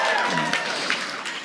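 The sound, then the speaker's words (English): A live audience at a comedy show claps together in a brief burst of applause, dense and steady, with a few voices mixed in, clapping in answer to being asked how many of them pee in the shower. “How many of you pee in the shower? Clap.”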